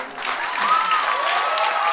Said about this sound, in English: And as I walked out into the bright, blurry morning sun, they applauded and whistled and called after me, "Good job, man. Good job."